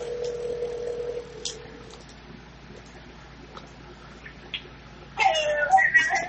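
A steady electronic phone tone hums for about two seconds as someone tries to place a phone call, followed by near silence, then a louder, warbling ringtone-like melody bursts in near the end.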